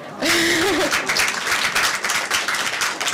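An audience breaks into steady applause, many hands clapping in a dense, continuous patter that holds for a few seconds, with a brief whoop or voice rising over the start.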